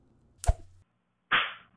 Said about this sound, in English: "Sounds like they're getting the cane," Marigold whispered excitedly. "On their bottoms, too. How delicious," Cynthia tittered. The young ladies giggled with every stroke, until a full dozen had been delivered.